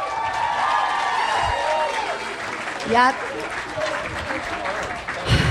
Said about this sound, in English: You guys, round of applause for everybody.